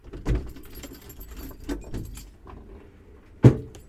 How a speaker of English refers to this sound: I'm, as usual, just going to open the windows and doors because I've been recording with the windows and doors shut. And you will understand why when I open these doors.